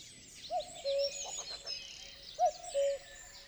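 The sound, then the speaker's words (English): A cuckoo gives its two-note call twice, a clear higher note dropping to a lower one, over a steady background of small birds chirping and twittering outdoors. “What kind of bird brings family drama, springtime sounds, and inspiration to clockmakers? Well, the cuckoo, of course.”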